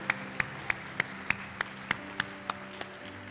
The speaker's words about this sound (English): Give the Lord a hand clap of praise this morning. Hallelujah.